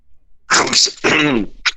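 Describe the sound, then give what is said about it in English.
Two loud, harsh coughs in quick succession, each with a rough, throaty voiced tail, followed by a short breathy burst at the end. No one speaks. “Oi, oi, oi, did you have a bit of a cough then?”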